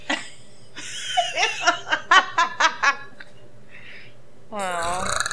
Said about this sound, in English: burp into the microphone